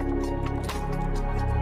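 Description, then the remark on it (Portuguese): A loud watery splash and churning of water as Ea dives into the sea, with bubbly sloshing and a few dripping, squishy bursts throughout. “Ea deu um mergulho no mar.”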